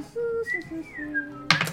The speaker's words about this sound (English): just gonna whistle innocently